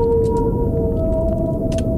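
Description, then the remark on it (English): Long, sustained tonal moans glide slowly over a deep, rumbling underwater background, with a few faint clicks scattered through, like a whale singing. “I don't know if it's as good as Whale Song.”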